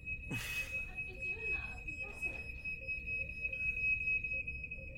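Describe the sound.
A smoke alarm emits a steady, piercing high-pitched tone throughout, with a sharp thump near the start and muffled voices and room noise underneath, as someone uses a big stick to push its button to deactivate it.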